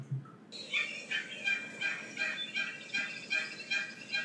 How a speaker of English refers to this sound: I think that sounds like an exotic bird, but no, it's just a female turkey yelping away.